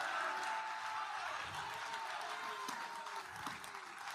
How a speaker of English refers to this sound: Yeah, take 30 seconds, clap, shout. Let the devil know you're going to your promised land.